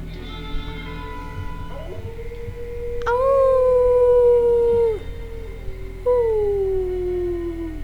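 Soft whimpering tones give way to two long, loud howls with falling pitch, the second trailing off slowly, made by a werewolf in a film, over a low rumbling background with no talking.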